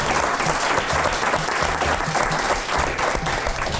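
An audience at the Mercury Room claps steadily, a dense, sustained wash of applause that stays loud and even for the whole few seconds, with no voices standing out.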